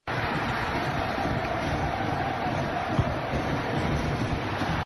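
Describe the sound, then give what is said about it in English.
A crowd cheers in a steady, dense roar that holds at an even loudness for about five seconds, with no single voice standing out from the wash of noise. “It was a crowd cheering.”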